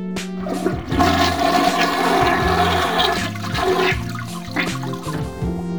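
toilet flushing

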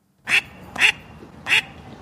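duck quack sound effect

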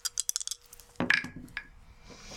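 dice rolling

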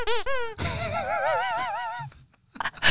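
squeaky dog toy squeaking

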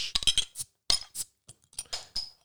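glass beer bottles clinking

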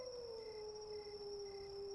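wolves howling

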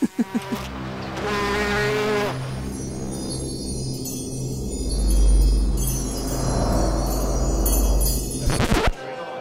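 bee buzzing

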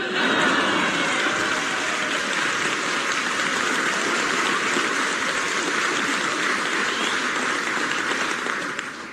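water gushing

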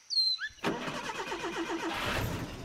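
car driving

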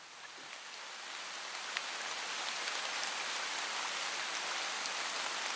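pouring rain

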